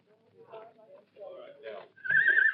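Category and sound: animal, horses neighing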